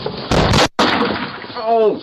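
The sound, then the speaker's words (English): A man kicking a front door at 2 a.m. on a Monday, recorded by a Ring doorbell camera: two loud, heavy crashing bangs in quick succession, followed by rough noisy rattling and a short voiced cry near the end. “He's convinced the only reason the pair ran off is because when the one on the left was kicking the front door, he shot himself in the thigh with a gun in his pocket.”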